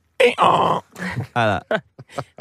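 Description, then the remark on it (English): A person's voice imitates a donkey braying, with strained, honking hee-haw bursts that rise and fall, followed by a few shorter gasping huffs trailing off. “I've got a lot of time for donkeys. Yeah, they make a lot of funny noises and they're nice and chill.”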